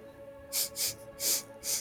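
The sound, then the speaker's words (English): A person imitates a dog sniffing a woman's footprints: four quick, breathy nasal sniffs in an uneven rhythm, with no talking around them. “I'm gonna sniff the footprints.”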